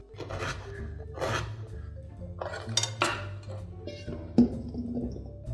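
A knife dices a beet into thick chunks on a cutting board in a handful of irregular, crisp knocks, spaced about a second apart, over a low steady hum.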